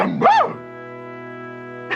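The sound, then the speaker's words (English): A single short, loud dog bark with a rising-falling pitch, followed by a steady, buzzing electronic hum that fills the rest of the moment. “Yes, and dogs.”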